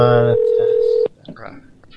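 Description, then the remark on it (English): A loud electronic telephone ring sounds for about a second, a buzzy multi-tone burst settling into a steady tone that cuts off abruptly, followed by faint talking. “So I like the part of the show when the phone rings.”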